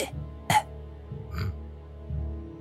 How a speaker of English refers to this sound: Weak little cough.